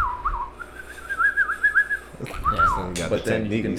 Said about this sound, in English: You can't whistle for real? We got you. You can do a lot of different things with the whistle. That's all I can do. I mean, just in general, obviously, yeah, like. Just that one note.